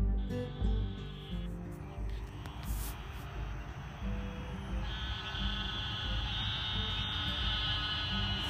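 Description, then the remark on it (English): A dense chorus of little bullfrogs in a small creek at night, around 9:40 pm in the dark, croaking in low, rapid pulses, overlapping continuously with a steady high insect-like whine above, and no voices. “Well, I don't know if you can hear that, but those are little bullfrogs in a small creek just down from my house.”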